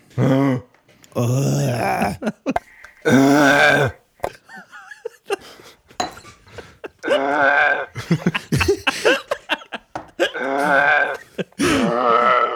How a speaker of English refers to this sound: How about just do like a grunt of disgust or something?